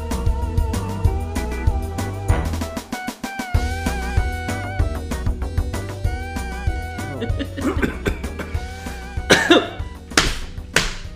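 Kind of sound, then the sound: human body sound, coughing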